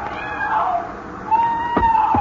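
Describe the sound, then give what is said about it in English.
A woman out in the surf at a beach cries: high, drawn-out wails rise out of steady rushing surf noise, one long wavering cry, a short pause, then a second sustained cry with a sharp burst near the end. “Then you hear it, the cry of a woman out in the surf.”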